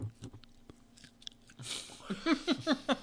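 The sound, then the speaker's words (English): Crunchy chewing of a peanut butter cup, starting with soft mouth sounds and then a run of five or six loud, rhythmic crunches. “If you guys can see hear that crunch.”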